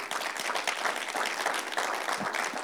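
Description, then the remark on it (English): A church audience applauds the church having given almost $50,000 to outreach this year, a dense, even wash of many hands clapping at a constant moderate level with no talking over it. “We can clap for that.”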